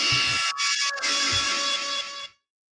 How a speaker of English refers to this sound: Well, the buzzer.